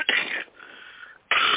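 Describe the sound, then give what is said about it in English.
Two harsh, breathy coughs, separated by a short wheezy intake of breath, with no talking in between. “And I just really want to apologize to my listeners because I'm going to be coughing all over the place, but I have stuff to say.”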